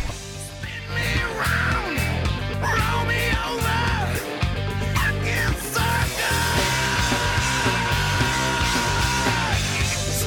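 A loud, dense rock song, the seventh track of the album, plays throughout, with a harsh screamed vocal over distorted guitars and pounding drums. Near the end it settles into a sustained held note.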